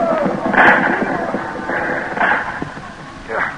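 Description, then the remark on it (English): Four sharp gunshots ring out at uneven intervals in a shootout at a pass, each a loud cracking burst over a steady rough background hiss. “He's the one that plugged me. You're a good shot, kid.”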